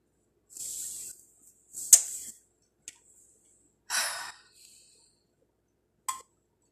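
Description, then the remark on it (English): In the morning, a coffee maker hisses and sputters in several uneven bursts of high, airy steam noise, broken by sharp little spits and pops, with quiet gaps between and no talking. “Sorry about the coffee maker, guys. Like I said, it's morning.”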